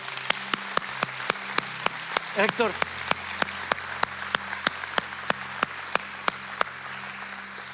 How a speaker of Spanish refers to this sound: Si va a dar un aplauso, déselo fuerte al Señor.